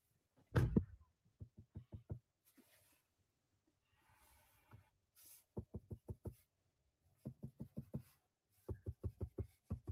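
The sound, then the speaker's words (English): Rapid bursts of fingertip taps on a touchscreen as a person taps the screen over and over, coming in quick runs of several soft, dull knocks with short pauses between, without any talking. “So basically he's just tapping the screen over and over and over again to try to get”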